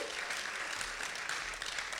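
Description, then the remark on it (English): An audience gives another round of applause, clapping steadily, a dense wash of many hands with no breaks, loud and sustained throughout, with no voices standing out above it. “Come on, let's give her another round of applause.”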